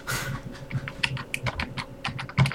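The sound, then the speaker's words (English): Rapid, irregular clicking of computer keyboard keys being typed on, fairly clear, with a soft low rumble underneath and no voices. “Where is my typey thing?”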